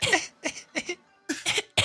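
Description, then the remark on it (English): A person coughs in a series of harsh, raspy bursts, about five in quick succession with a short pause midway, loud with no talking. “I got the black lung bop.”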